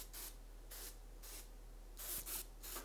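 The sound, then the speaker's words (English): Six short hissing bursts of Old Spice aerosol body spray, spritzed in quick succession with brief pauses between them. The sound is fairly soft, and there is no talking. “I'm just going to spray some Old Spice.”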